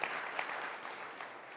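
A church audience claps steadily for themselves and their work in 2017, a dense wash of applause with scattered sharper claps, sustained at an even level throughout without any voices.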